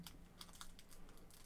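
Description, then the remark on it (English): Several quick, crisp snips of scissors cutting through the thin plastic wrapper of a Mexican candy packet, quiet, with no one talking. “Did you just cut the other part that you weren't fucking ripping?”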